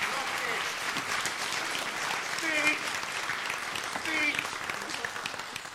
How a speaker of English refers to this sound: And church, would you just give them a round of applause to encourage them?